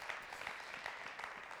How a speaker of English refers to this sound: Yeah, give the Lord a hand clap of praise in this place today.